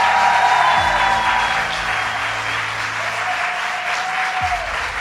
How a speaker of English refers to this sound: And let's give a round of applause to all the legislators who finally got it done.